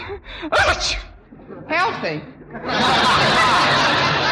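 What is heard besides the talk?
sneeze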